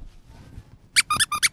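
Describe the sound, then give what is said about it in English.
A squeaker at the end of the trunk of an elephant trunk thong squeaks five times in quick, uneven succession: sharp, high-pitched, reedy honks that follow a brief stretch of quiet, low rumble. “I have an elephant trunk thong on, and at the end of the trunk is a squeaker. So now you can squeak your nuts.”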